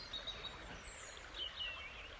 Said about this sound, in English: And then in the background, I can also hear the repetitive call of the song thrush. The song thrush is identifiable because it does one note and it repeats that three or four times, and then it moves on to the next one.